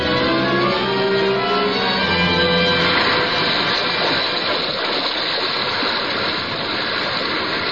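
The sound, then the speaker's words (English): Loud, churning sea water surges and roars continuously as a vast whale breaks the surface, the waters swelling in broad circles and upheaving, with a low humming rumble beneath the rush during the first few seconds. “Suddenly the waters around them slowly swelled in broad circles and quickly upheaved.”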